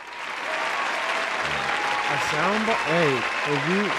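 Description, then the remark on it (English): A burst of canned applause played from a soundboard button plays from start to finish, dense steady clapping with crowd noise, while voices talk over it partway through. “Go ahead, hit that applause button for him if you want to.”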